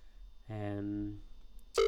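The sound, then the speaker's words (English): Ringback tone of an outgoing phone call to a hoped-for guest: a steady buzzing tone about three-quarters of a second long, a short pause, then a louder tone cutting in at the end. “I'm going to call this person twice.”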